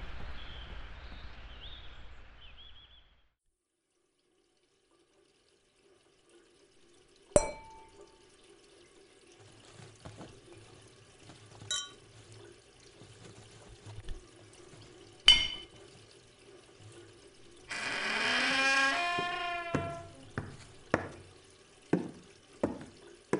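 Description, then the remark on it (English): A glass being vigorously cleaned at a sink, with sharp clinks and knocks scattered over a low hum, water splashing, then a rising squeaky rub as the glass is wiped hard. “You're cleaning that glass with a little too much gusto, doll.”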